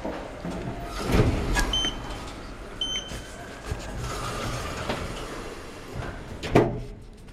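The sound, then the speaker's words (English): Elevator doors slide with a couple of thumping bumps, and a steady mechanical hum of the elevator running fills the background, with faint high whines and clicks scattered throughout. “I thought we'd stand here all weekend long and stare at the closed elevator doors. Just get in the elevator, please.”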